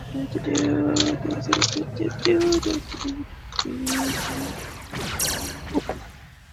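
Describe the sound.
Dice clatter and tumble across a hard table in a quick run of sharp clicks and rattles, with a low murmur of voices underneath.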